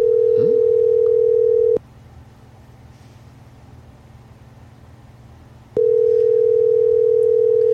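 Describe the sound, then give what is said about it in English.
An outgoing phone call rings: a steady electronic ringback tone sounds for about two seconds, pauses for four, then starts again, clear over a faint low hum. “I know somebody's been waiting for this phone call, so let's see if she picks up the phone.”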